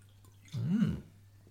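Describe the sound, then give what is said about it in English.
A single short sip and swallow of water, lasting about half a second against a quiet low hum, with no talking. “And here, I'm going to pause to take a little drink of water.”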